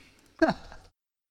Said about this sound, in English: That sound I'm hearing. Oh, was it on your computer? Okay. No, it was me breathing. Oh, okay. It wasn't coming through the mic, so that's why.